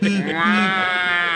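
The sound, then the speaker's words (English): A loud bleating call, like a sheep or goat, sustained and wavering for over a second with a rich, nasal tone. “Hear that? It's your cattle call to riches.”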